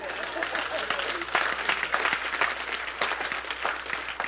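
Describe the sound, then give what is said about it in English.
An audience claps steadily for a few seconds, a dense, even patter of many hands with occasional louder pops, and no voices on top. “You can clap on that.”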